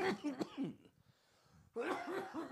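A person coughs, a quick cluster of harsh coughs, then a brief quiet pause before another loud burst of coughing follows, picked up on both microphones.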